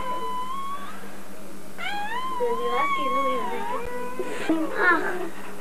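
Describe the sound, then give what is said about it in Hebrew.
High, thin mewing calls from tiny newborn kittens, some born on a Thursday and some on a Friday, several overlapping wavering cries in a row, moderately loud, with faint background noise throughout. “לא, זה הקולות שמשמיעים, הם עוד לא יודעים אם בוכה.”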